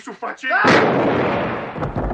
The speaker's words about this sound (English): All right, drop the gun. Put your hands in the air. You're under arrest. I said drop it. The guy doesn't drop it, and Ness shoots him.